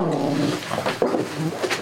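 A dog barks and growls, a short run of rough, throaty vocalizations with a couple of sharper yaps, with no one talking.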